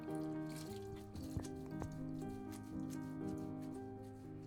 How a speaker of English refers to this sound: from rapping on the window pane to dislodge the water, the cold drops of water in the morning.